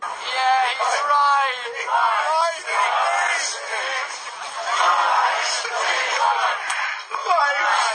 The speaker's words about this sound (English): And you can hear the fans booing pretty much throughout the whole entire game, y'all.